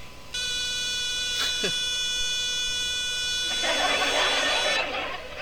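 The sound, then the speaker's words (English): Many smoke detectors blare at once, a loud, shrill tone held steadily for several seconds, a layered electronic whine without pause, with a burst of hissy noise swelling underneath near the end. “sings in the same key as a smoke detector”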